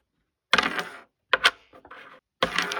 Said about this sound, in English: Christmas time has not come full circle until Crokinole is set up downstairs. Crokinole is a tabletop shuffleboard / curling game where players flick wooden pieces across the circular playing